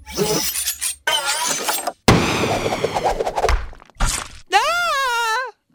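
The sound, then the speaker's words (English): Sound effects of a space whale firing harpoons: a rapid string of loud, noisy bursts and crunching, shattering hits with short gaps between them, ending in a long, wavering, whale-like tonal cry. “Well, let's get the space whale firing harpoons!”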